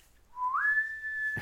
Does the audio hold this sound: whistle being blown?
yes